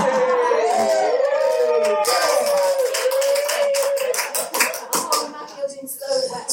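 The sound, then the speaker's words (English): A crowd claps and howls together, wavering howl-like whoops rising and falling over steady dense applause; the howling fades after a few seconds while the clapping continues, growing more scattered toward the end. “Just look at that applause then, like, what did I do?”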